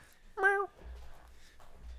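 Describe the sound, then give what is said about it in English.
A cat named Nala lets out one short meow near the microphone, loud and clear, followed by soft low rumbling and faint background noise. “Good cat. Good cat.”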